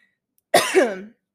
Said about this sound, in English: I had to get a sip of water because I was so terrified I was gonna start coughing. And here I am coughing.